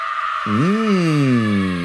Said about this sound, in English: I feel like they wouldn't be cheering, they would be screaming. We need to put in screaming.